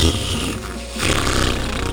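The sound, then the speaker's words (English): A loud, buzzy farting noise blown with the mouth, a wet raspberry that sags briefly, then surges back into a second sputtering burst lasting about a second. “farting noises with my mouth.”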